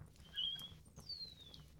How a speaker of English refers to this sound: Birds! Yeah. Birds in the trees, in the virtual trees, and definitely not in the eaves of our house.